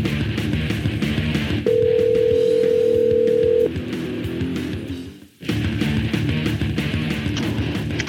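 A telephone line rings once with a long, steady electronic tone lasting about two seconds as the show Shop Talk calls a guest, heard over a continuous music bed that briefly drops out near the end.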